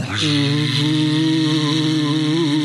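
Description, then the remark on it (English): A fake vacuum cleaner sound effect runs loud and steady, a droning motor hum with a high whine over it that holds level for a few seconds after starting up abruptly. “Let's put on our fake vacuum cleaner so Noreen thinks we're busy.”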